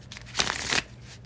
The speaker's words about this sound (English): Let me give the deck a few shuffles and we can get straight into it.